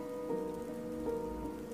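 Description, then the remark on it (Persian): Steady rain falls in a continuous, even hiss with no breaks, joined by a soft sustained tonal hum underneath. No voices are present. “شبایی که بارون میاد ما میشینیم اینجا کنج آسایشگاه، ما ایم و این دیوونه قدیمیه که میشناسی و چند تا دیوونه دیگه.”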